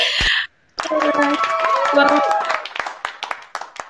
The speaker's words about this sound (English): Thank you for the clap.